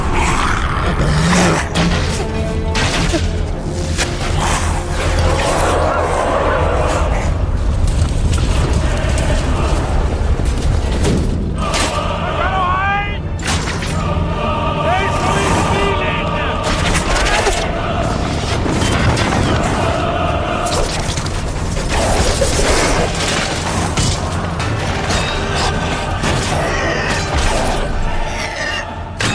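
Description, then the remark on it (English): A dense, loud film battle soundscape from The Lord of the Rings, the fight on the slopes of Mount Doom, with booming explosions and roaring rumble, layered with clanking, shattering metal, continuing without pause for about thirty seconds and filling the foreground. “And the explosion is, you know.”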